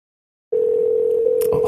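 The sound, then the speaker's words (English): After a brief silence, a steady telephone line tone starts and holds unbroken at a clear, even level, with a short clicking burst near the end. “That's a phone ringing.”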